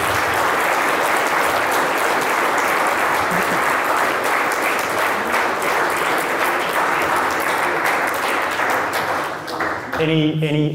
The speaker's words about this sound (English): Guys, join me in thanking these guys for coming in tonight. Big round of applause.